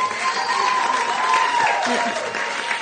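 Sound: audience applause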